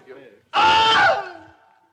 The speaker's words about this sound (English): A man getting bit by an alligator and he screams.